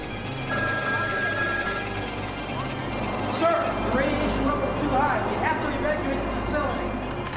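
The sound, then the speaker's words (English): A telephone rings through a dense, noisy background, its tones steady over a low rumble, with indistinct voices and clutter mixed in around it. “So the phone rings and we're immediately treated to this loveliness.”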